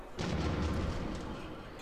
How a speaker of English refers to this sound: There was an explosion.